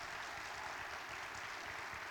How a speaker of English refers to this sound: Can you give him a round of applause of appreciation?